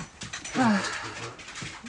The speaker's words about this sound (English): I'm sorry, the dogs are distracting us. They're eating.